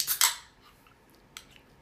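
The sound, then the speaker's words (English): A can of strong chuhai alcoholic drink, 9% alcohol, is cracked open with a sharp metallic snap and a short bright hiss of fizz, followed by a couple of faint clicks. No one speaks. “Well, I'm thinking I'm going to open this can of alcoholic drink.”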